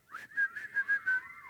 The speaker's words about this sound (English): So what I'm going to do today, I'm just going to wet your whistle. Everybody whistle.